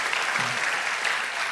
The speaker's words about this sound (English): Students, give yourselves a hand. Y'all have been phenomenal this weekend.